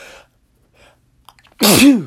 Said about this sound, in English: I got another sneeze coming. Hold on.